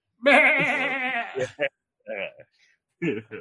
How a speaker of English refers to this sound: This is probably a good time for a goat bleat.